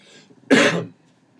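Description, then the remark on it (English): A single short, throaty cough bursts out loudly, lasting about half a second, with quiet background before and after and no talking. “I have a cough, not Corona.”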